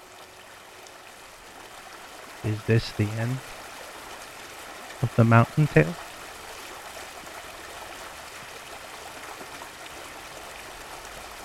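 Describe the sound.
A steady rush of flowing river water runs throughout at moderate volume, with a person speaking briefly over it twice.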